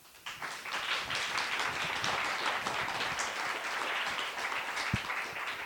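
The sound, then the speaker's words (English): An audience breaks into sustained applause for a panel, many hands clapping in a dense, steady patter that starts abruptly and holds at an even level throughout without dying away. “Okay, well look, big round of applause for the panel.”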